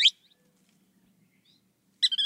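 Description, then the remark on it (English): Two sharp bursts of bird calls from a ringed kingfisher and a thick-billed kingbird in Central America, one at the very start and a louder stuttering series near the end, separated by near silence with only a faint low hum between. “In Central America, an enormous ringed kingfisher. While nearby, a thick-billed kingbird calls.”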